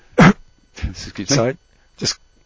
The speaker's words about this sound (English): Sorry, just coughing.